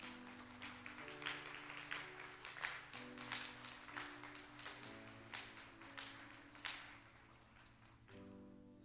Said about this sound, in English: You guys, give them a hand.